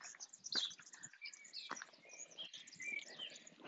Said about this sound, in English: just came outside. You hear the birds? Insane, right?